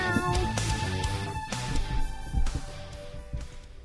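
A cat meows several times in a row, loud, each drawn-out call rising and falling with a slightly strained, whiny tone, with no talking.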